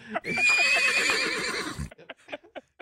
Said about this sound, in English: I'm like, hi, I'm here with Officer something, and he's agreed to allow you to talk to his horse, Lucky. Go ahead.